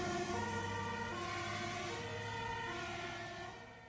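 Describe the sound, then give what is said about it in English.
Town alarm sirens in Meersten blare continuously during flooding after a dike burst, signalling a mass evacuation: a steady droning wail rich in overtones that holds for several seconds before beginning to fade. No voices are heard. “A dike also burst in Meersten, which forced an immediate mass evacuation of people with the town alarm sirens going off.”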